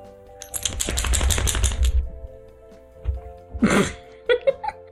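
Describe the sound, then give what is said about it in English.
A dog shakes its head, ears flapping in a quick rhythmic burst of soft slaps for about two seconds, followed by a short snorting sneeze and a few faint sniffs. “They shake their head and they flap their ears.”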